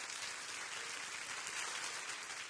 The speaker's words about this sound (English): Clap your hands.